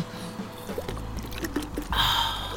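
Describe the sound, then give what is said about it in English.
Water splashes and trickles as a towel is soaked with water to cool someone down, with soft squishy sounds of wet cloth and a louder gush of pouring near the end. “let me soak that towel with this water.”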